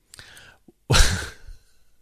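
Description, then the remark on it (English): A single sneeze: a short breathy intake, a brief pause, then one sharp, explosive burst of air that fades out over about half a second, with no talking. “I sneezed and no bodily grip on muscles or anything was inevitable.”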